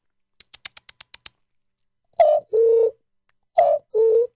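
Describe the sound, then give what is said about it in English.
A cell phone being dialed: seven quick, evenly spaced keypad tones, then a pause and two buzzy double ring tones on the line. No one speaks. “Let me switch phones.”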